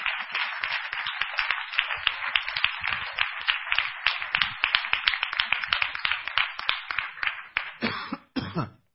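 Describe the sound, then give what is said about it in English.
A church audience applauds steadily, clapping to thank the Lord during a sermon, many hands clapping at once in a dense, crackling wash that holds for several seconds, then thins out and stops with a few final claps. “Let's clap to the Lord and thank Him.”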